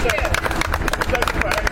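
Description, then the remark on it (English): A crowd of bystanders applauds jurors of a murder trial as they leave after watching the sentencing, a dense patter of overlapping claps that stays steady and fairly loud throughout, mixed with a murmur of voices. “Several of the jurors returned today to watch the sentencing, and as they left, they were applauded by bystanders.”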